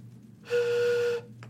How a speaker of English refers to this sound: And the train whistle.